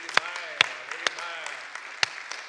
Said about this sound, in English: Someone clap your hands to Jesus Christ.